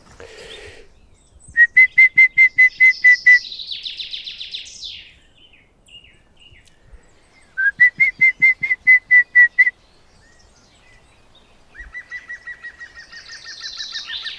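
green woodpecker call

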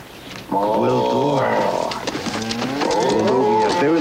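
cow mooing

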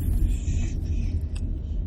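car engine rumble

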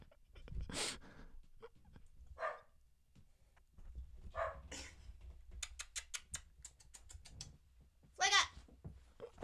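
dog

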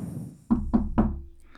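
knock

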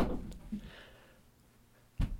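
door being shut

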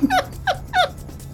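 sneeze

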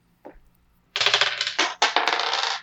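dice being rolled

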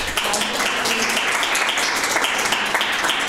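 audience round of applause

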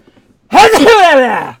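sneeze

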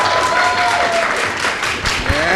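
audience applauding

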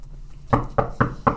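knocking on a door

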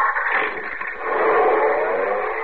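car engine starting

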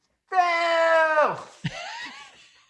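person yelling

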